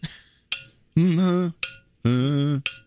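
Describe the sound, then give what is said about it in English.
A tin cup is struck three times, each sharp clank ringing briefly, alternating with a voice singing a sustained note as if matching the cup's pitch. “Here's a tin cup.”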